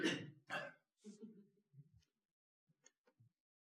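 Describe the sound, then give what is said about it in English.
Two sharp, harsh coughs in quick succession, followed by softer throat clearing and a few quiet mouth clicks, with no speech. “Maybe now I won't be coughing at you. Sorry about that.”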